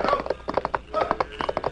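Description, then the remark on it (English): Horse hooves gallop in quick, rhythmic clusters of thudding beats, steady throughout, with a faint low background rumble and no voices, as a rider spurs his horse forward along a trail by a mine. “He spurred forward to meet him.”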